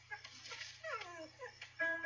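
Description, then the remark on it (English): A dog whimpers in a string of short, high, wavering whines that rise and fall over about two seconds, with a steady low hum underneath. “He doesn't like any of those names.”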